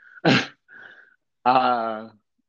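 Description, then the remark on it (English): The speaker's mother coughs in the background: one sharp, harsh burst, then a longer, strained voiced sound lasting under a second, with a faint steady tone in between. “I think my mother's in the background coughing.”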